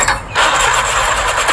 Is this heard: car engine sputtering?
yes